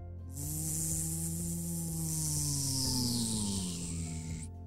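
A delivery drone bringing two containers of bubbleberry soap flies overhead: a steady, buzzing motor whine with layered harmonic tones and a hissy high edge drones for about four seconds, its pitch sagging slightly before it cuts off.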